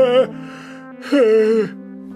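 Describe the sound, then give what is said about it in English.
Someone lets out a drawn-out, breathy yawn: a short voiced onset, a brief pause, then a longer, sagging groan that trails off. “I made it halfway through before yawning.”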